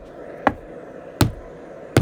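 A rod stabs and pounds at a trap door: three sharp, heavy knocks, evenly spaced about three quarters of a second apart, loud against a quiet background with no talking.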